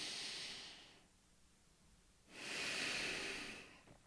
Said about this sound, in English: If you can, in the moment, take control of your breath and focus only on the mechanism of breathing, inhaling.